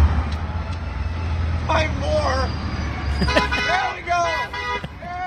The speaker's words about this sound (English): So is that one or two honks? Well, that was one. Okay. That one car. It was per car. One car.